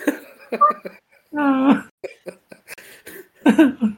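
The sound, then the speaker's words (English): A single loud, drawn-out burp lasting about half a second, surrounded by short bursts of voices and breathy vocal noises. “You don't mute yourself when you fucking burp, though.”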